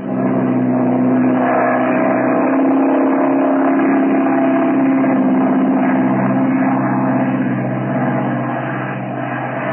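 A propeller plane engine starts for takeoff on the Merrill-Lambie flight. It roars loud in a steady, throbbing drone that holds for the whole stretch, with a slight rise and dip in pitch and no voices.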